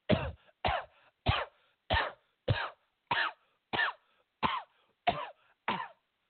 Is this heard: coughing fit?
yes